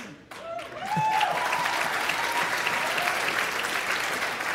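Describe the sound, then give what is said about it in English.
An audience of conservative college students breaks into applause after being called thick-headed and stubborn as hell, a dense, steady wash of clapping that swells within the first second and holds loud and even to the end, with a few faint voices mixed in. “You got them to applaud by calling them thick-headed and stubborn as hell.”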